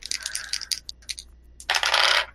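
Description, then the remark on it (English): Dice clatter across a hard tabletop, first a scatter of quick light clicks, then a denser, louder rattling burst near the end, with no voices. “I rolled really poorly on the dice, though, so that's 4 plus 4 is 8 for a crit.”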